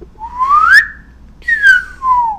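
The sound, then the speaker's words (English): A person whistles in two sliding phrases, first rising in pitch, then after a short pause falling back down, clear and fairly loud with no talking. “I wish I could whistle.”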